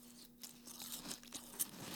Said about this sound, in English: Are you eating Fruity Pebbles right now? What? That's the snack? Let's get a good crunch. Yeah, get it. Here, get in the mic. Get a good crunch in there.